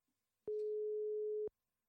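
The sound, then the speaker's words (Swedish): A single telephone ringback tone while calling a team coach for a sports show: one steady, mid-pitched electronic beep holding for about a second at even loudness, then silence. “Vi tar och slår honom en signal.”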